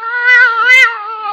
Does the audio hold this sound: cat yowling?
yes